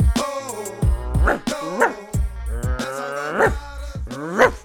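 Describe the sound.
A man's voice imitates a rapper's dog-like barks, letting out a rapid run of gruff barks and growling yelps, loud, in a steady rhythmic pattern for several seconds.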